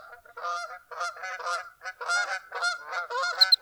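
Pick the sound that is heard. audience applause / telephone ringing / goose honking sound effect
goose honking sound effect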